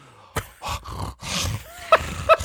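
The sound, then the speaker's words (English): A voice imitates a tiger with a few short, rough, husky growls and groans in quick succession, fairly loud, ending in two sharper bursts. “That sounds like a tiger.”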